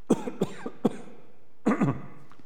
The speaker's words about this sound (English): Excuse me, I'm going to clear my throat again.